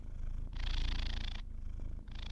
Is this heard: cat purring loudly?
yes